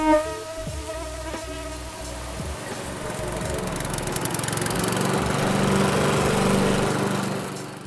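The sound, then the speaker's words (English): A lawn mower engine runs steadily and loudly throughout in a Minnesota summer, a droning motor hum with a thin, high mosquito buzz layered over it, growing slightly fuller toward the end. No one speaks. “That's right, mosquitoes and lawnmowers.”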